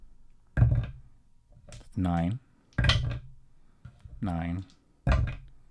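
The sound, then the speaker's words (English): Dice rattle and clatter onto a hard surface in three separate sharp bursts, with brief wordless vocal sounds in between. “I'm going to roll the dice.”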